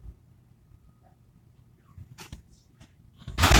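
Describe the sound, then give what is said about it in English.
A door being handled: a few sharp clicks and knocks over a low background rumble, ending in a loud, brief rattling rush of noise. No one speaks. “I've just got to check the door here.”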